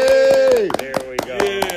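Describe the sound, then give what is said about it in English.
Steady, rapid applause clapped with cupped hands, a hollow, cupped quality, repeating in an uneven rhythm beneath a sustained, sung or hummed tone that slides downward partway through. “Everybody cup your hands and get it up for you one time.”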